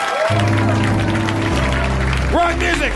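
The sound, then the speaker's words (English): A crowd claps and cheers at the end of a live Harmontown show in a steady, dense wash of applause that lasts throughout, mixed with loud rock music carrying sustained bass notes and rising tones. “We keep clapping!”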